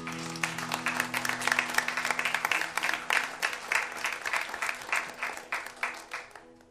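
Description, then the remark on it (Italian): Sustained audience applause, a dense mass of many hands clapping steadily at moderate loudness, with a faint low hum beneath and no voices standing out, tapering slightly toward the end. “Un grande applauso.”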